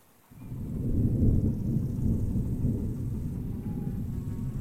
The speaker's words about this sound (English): Thunder. Yes. Oh, I don't like thunder. Let's take shelter.